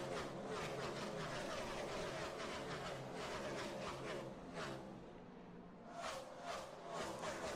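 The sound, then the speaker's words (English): Stock cars roar around a racetrack into turn two in a loud, continuous wall of engine noise, with brief surges as cars pass, as Christopher Bell's No. 95 works over Denny Hamlin from the back. “Oklahoma Land Rush into turn number two, as the 95 of Christopher Bell is going to start to work over Denny Hamlin from the back.”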